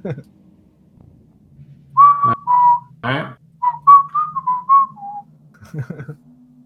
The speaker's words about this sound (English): He whistles as he just kind of gingerly skips down the hallway.